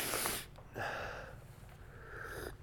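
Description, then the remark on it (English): Three close, airy sniffles in a row, the first the loudest, each a short rush of breath drawn through a stuffy nose with brief pauses between, and no talking. “And I apologize for my voice and my sniffling and coughing that you'll probably have to be subjected to if you listen to this.”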